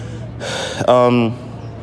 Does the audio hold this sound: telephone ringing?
no